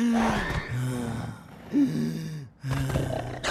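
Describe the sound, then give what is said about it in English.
A voice imitates the labored breathing of a coronavirus symptom with a run of loud, raspy, groaning gasps, about four in steady succession, with no talking. “Third, trouble breathing. It might even sound like this.”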